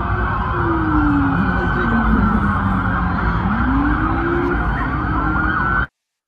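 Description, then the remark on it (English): Several police sirens wail and sweep up and down over a dense, loud rumble of traffic backed up with police cars in Bayside at 9:35 at night on January 1, continuous for about six seconds before cutting off abruptly. “Wow, that was literally backed up traffic of nothing but police.”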